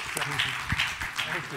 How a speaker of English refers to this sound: Let's have a big round of applause. Thank you.